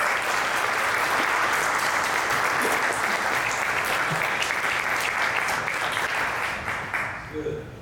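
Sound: audience applauding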